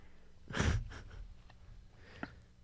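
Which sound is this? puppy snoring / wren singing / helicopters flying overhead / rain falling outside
puppy snoring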